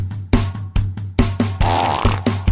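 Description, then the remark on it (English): A rapid string of loud, sputtering fart noises, about seven bursts in a row, including one longer drawn-out blast, all prominent with no talking, from a person who ate beans the night before. “You know what that sound means? Last night I had beans.”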